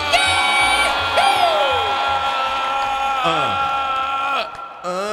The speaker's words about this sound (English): Started that scream with no air in my lungs.